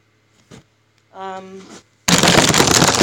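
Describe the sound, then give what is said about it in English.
A phone knocked over while things are moved around in a back room falls onto a plastic bag: a faint click and a short humming tone, then a sudden loud, sustained crackle of plastic that runs to the end. “I'm moving some stuff around in the back room and I knocked my phone over.”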